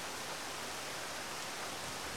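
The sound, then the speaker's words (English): Torrential rain from a storm pours down over a swamp in a steady, unbroken hiss and roar, evenly dense throughout without any distinct drops or pauses, fairly soft in level, with no voices. “Of a rain is it? It is torrential.”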